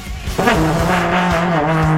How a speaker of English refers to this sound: You want to hear an airplane?